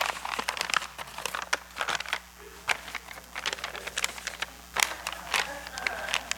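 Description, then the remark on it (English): Crisp paper crinkling and rustling in irregular bursts, with a few sharper creases and crackles as a sheet of paper is handled and given its final fold, completing a paper fish; no one speaks. “My final fold.”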